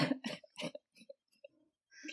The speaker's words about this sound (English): Listeners, I'm just going to warn you, I'm dealing with something that is in my lungs, so laughs or coughs right now.